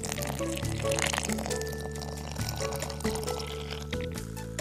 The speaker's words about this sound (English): Okay, that's 1 cup. I'm going to put my 1 cup of flour here into my empty Tupperware. Then I added the water. All right, when I add this water to the flour, it's going to activate the bacteria in the flour. Here we go.